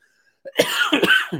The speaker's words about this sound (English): Anyway, so I'm still coughing,